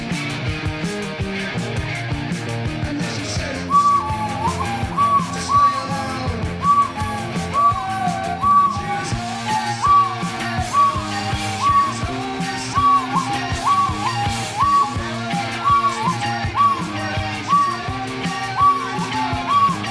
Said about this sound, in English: We should play the death whistle. Here we go.